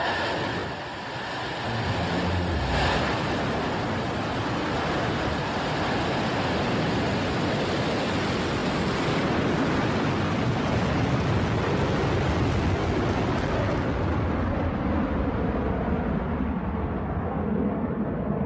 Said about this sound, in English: Next milestone here, MECO, main engine cutoff. The engine's going to cut off, but it's going to continue its ascent to space, both the booster and the capsule together.